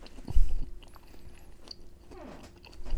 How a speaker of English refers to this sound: Horrible sign, though, hearing people chew. Yeah. We can cut it out.